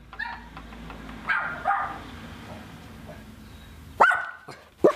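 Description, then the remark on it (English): A dog at a house's front door barks a handful of times as the door is opened to a visitor, a couple of quieter yips early on, then two sharp, loud barks near the end over a low background hum. “I'm greeted by a couple of things. One is a dog”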